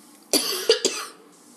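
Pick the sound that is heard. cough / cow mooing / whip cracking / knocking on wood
cough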